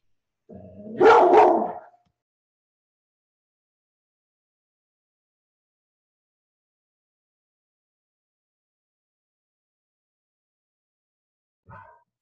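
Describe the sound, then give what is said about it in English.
A loud, brief burst of barking from three dogs that saw someone out front, several overlapping barks packed into about a second and a half, followed by long silence and a faint short sound at the very end. “I have three dogs and they saw someone out front.”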